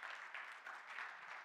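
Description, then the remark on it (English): A church audience claps together to celebrate the church's 40th year of ministry, a dense, steady patter of many hands that stays at an even, moderate loudness throughout the short burst, with no voices over it. “Yes, please clap.”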